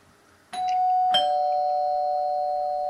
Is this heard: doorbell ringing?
yes